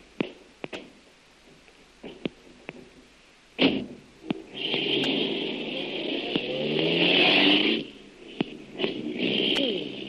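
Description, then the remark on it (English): A few sharp clicks and a heavy door slam, then a car engine starts, revs up with a rising whine and runs loudly for several seconds as the vehicle pulls away. “Here's my car, Lil. Hop in.”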